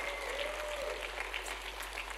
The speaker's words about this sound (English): Come on, somebody give a clap offering of praise to our Lord God.